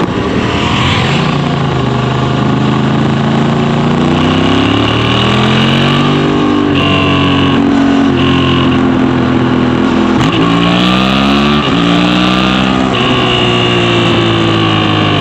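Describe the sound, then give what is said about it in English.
A Honda Hornet motorcycle engine revs and rises through the gears, with a deep exhaust rumble from its Honda-tuned exhaust with a larger and a smaller pipe, and pitch sweeps as it accelerates, then backs off on the overrun. Loud and continuous, no talking. “Listen to one on my video. On the video, yeah. It sounds nice, and it sounds nice on the overrun.”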